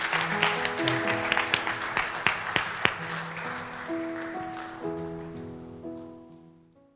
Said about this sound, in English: So what you do now is you clap for what God is doing.